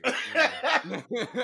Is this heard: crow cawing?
no